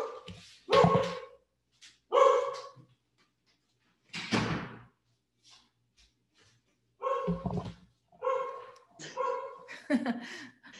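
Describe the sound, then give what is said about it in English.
A dog barks repeatedly in a home office in short, loud bursts with brief pauses, some barks doubling up, followed by a few quicker barks toward the end. “My dog going.”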